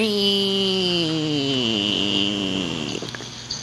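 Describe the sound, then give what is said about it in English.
A voice imitates a cicada with a sustained, raspy buzz for about three seconds. It has a strong hissing high edge, and its pitch slowly sags before it breaks off. “And they go...”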